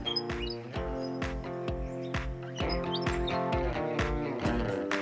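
Bright, short bird chirps pop up here and there over a steady musical backing with sustained tones and a regular plucked beat; no one speaks.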